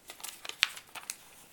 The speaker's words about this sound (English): Trying to flip the page one-handed.